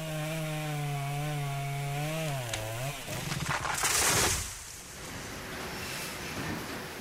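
tool, chainsaw cutting down trees

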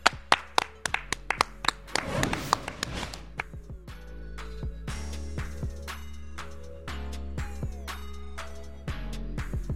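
human body sound, hands clapping

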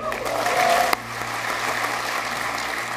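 crowd, crowd applause

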